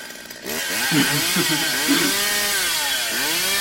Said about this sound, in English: I have a Halloween soundboard, if you can't tell. Yeah, give us a couple more that you got. A couple more. I got a chainsaw.